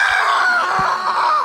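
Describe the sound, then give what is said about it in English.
A woman imitates the sound of someone masturbating: one loud, drawn-out, strained vocal wail, high-pitched and wavering, held for about a second and a half on its own. “I know what your wanking sounds like, and it sounds like this, and then she flawlessly replicates it.”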